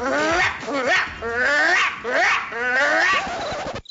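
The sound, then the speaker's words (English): A dog barks aggressively, loud and agitated, its cries stretching into drawn-out, wavering yowls in about four long bursts with barely a pause between them. “The aggressive bark is”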